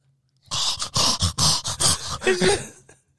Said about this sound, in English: Yeah, you know he's in there breathing like trying to breathe. That shit sounds like a fucking pug breathing right now.